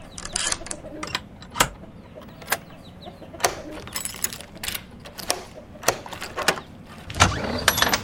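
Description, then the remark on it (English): Agitated chickens out back cluck in a busy, irregular stream of short, sharp bursts, some louder than others, over a low steady background rumble. “Something out back's been getting my chickens all worked up. Can't watch my goddamn stories under all that clucking.”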